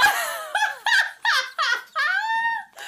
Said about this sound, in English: He just went downstairs to wrangle the dogs who are barking.